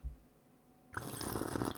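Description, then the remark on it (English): After a near-silent moment, someone abruptly starts slurping a hot drink: a loud, sustained, airy and wet sucking noise that runs unbroken to the end. “So, well, thank you for that slurp.”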